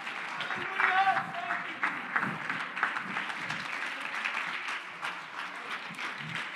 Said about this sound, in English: Clap your hands all over again. Hallelujah, God. Come on, mean it. Come on, young lady, clap your hands unto the Lord. Come on, sir, in the name of Jesus.